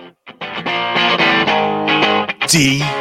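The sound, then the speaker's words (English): The opening riff of a 1991 rock song on a loud, heavily distorted electric guitar: thick sustained power chords broken by short choppy stops, ending with a bending, sliding note that rises and falls in pitch. “I mean, you just hear the first riff.”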